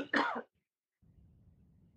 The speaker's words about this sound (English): Did you just cough?